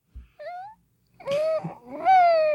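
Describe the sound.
A person imitates a cat meowing, making three drawn-out, whiny meows. Each is longer and louder than the last, with no talking in between.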